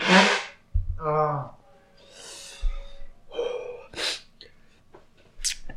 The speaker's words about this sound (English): I need to blow my nose. Excuse me for a minute.